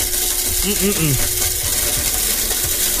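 A blender runs loud and steady, grinding and rattling as a CD and paper churn inside, with a harsh, continuous whir for the whole stretch.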